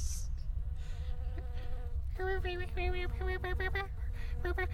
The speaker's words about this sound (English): Oh, my God. There's this giant bee coming for us. Oh, God. Oh, God. And it has a lot of it seems to be like wisecracking in some sort of alien language. Because all the other bees with it.